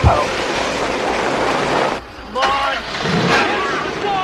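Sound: car engine revving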